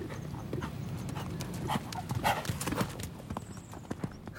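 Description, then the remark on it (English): Horse hooves clip-clop in a steady, uneven rhythm of sharp knocks at moderate volume, with soft breathy noise underneath and no voices. “Makes me think of riding on horseback over the endless plains.”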